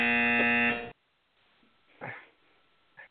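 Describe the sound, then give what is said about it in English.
A loud, harsh buzzer blares for just under a second to end a caller's time, cutting off abruptly, leaving near silence broken by a brief breathy rustle and a short faint noise. “And it's like he kept adding words, like he was waiting on the buzzer.”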